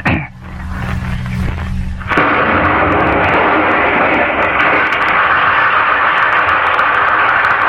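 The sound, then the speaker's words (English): A voice imitates an explosion with a low, rumbling hum that bursts into a loud, sustained roaring blast, held steadily for several seconds. “I will sound like an explosion.”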